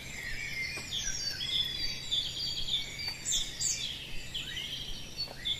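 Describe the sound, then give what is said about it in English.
Blackbird and robin singing outdoors, a steady mix of overlapping whistled phrases and thin high trills from several birds, with no voices. “What are the two birds we are hearing mostly at the moment? Blackbird and robin.”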